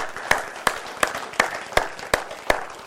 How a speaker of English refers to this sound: Can we give the Lord a big hand clap for that?